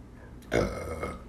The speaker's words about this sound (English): Did I just burp smoke, bro? Yeah, that happens when you smoke weed.